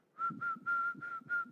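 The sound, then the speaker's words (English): Someone whistles a Christmas carol tune, a run of short, clear notes in a steady rhythm, soft, with no talking. “And … was whistling Christmas carols, you know.”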